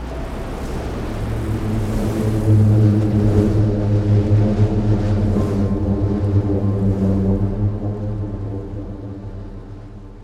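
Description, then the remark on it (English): Booming sand from a dune avalanche: a deep, steady droning hum with layered tones, like a low engine, rising slightly in the middle and holding for about ten seconds with no voices. “Sometimes this happens spontaneously when the wind picks up and creates these mini avalanches.”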